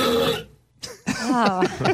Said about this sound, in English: Okay, here is the burp and the reaction. 112.4. Wow. It's hard to hear how loud it is because all the audio is kind of normalized here. Like, we can't really play anything louder. But here's just the burp again.